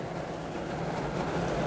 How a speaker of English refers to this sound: Boy, it's loud. Now I'm commenting on the rain.